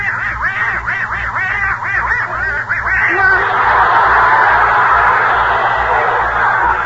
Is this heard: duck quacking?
yes